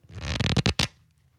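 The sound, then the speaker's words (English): A quick riffle through a deck of 52 playing cards, a dense flutter of rapid paper snaps lasting under a second and ending in a few sharper flicks, then near silence. “That was 52 cards.”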